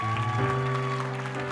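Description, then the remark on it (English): A church audience gives itself a hand, clapping steadily in a dense, continuous wash of applause, layered over sustained keyboard or organ chords that shift once partway through. “Come on, give yourselves a big hand clap right now in this place.”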